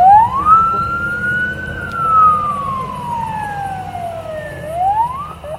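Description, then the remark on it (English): A Border Patrol truck's siren wails in slow rising and falling sweeps over a low engine rumble as the truck drives away with detained people loaded in it, steady, with no voices. “They're all loaded into the Border Patrol truck and taken away.”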